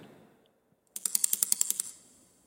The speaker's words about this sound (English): And its feet. I know you don't think a spider would have feet, but this one did. It made a strange tapping sound as it scurried across the floor. Like it didn't keep its nails trimmed.